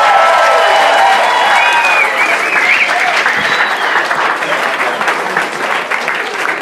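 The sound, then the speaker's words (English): An audience applauds comedian Harland Williams loudly and steadily, a dense wash of clapping with a few cheers and whistles mixed in, the applause holding strong for several seconds before easing slightly. “Give it up again for Harland Williams, everybody.”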